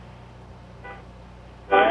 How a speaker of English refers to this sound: Oh man, there's so much honking.